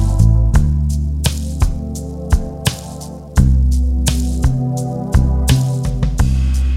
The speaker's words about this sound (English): I'm gonna put a little echo.